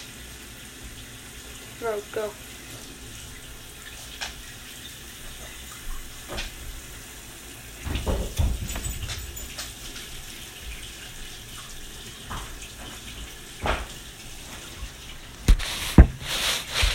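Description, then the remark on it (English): Waffle batter is carefully poured into a hot waffle iron with a wet, hissing sizzle, joined by scattered clicks and clatter, and a voice briefly speaks a word or two. “Okay, now, once your waffle iron is done, open it up, carefully pour your mix into the waffle iron.”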